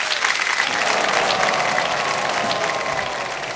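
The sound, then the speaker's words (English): A crowd applauds steadily in answer to the question of who didn't watch the Oscars this year, a dense wash of many hands clapping at a loud, even level that tapers only slightly toward the end, with no voices standing out. “By your applause, who didn't watch the Oscars this year?”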